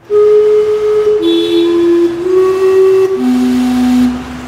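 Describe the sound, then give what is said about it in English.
The Gastown steam clock at the corner of Cambie and Water Streets in Vancouver chimes a short tune on its whistles: four loud, sustained, breathy notes that step between pitches, each flowing into the next, with no voices. “The beloved steam clock on the corner of Cambie and Water Streets is still chiming, but the iconic fixture is behind yellow tape after one of its glass panes was shattered overnight.”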